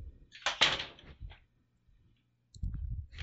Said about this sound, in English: Could you use the other door to come through? Because I'm recording at the moment and that slamming comes straight through.